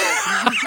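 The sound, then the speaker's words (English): A single quick sneeze, a short breathy burst with a sharp little peak near its end, heard alone with no talking around it. “Bless you.”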